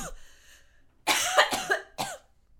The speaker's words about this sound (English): Dang it. You okay? Yeah, I just sometimes get a cough attack.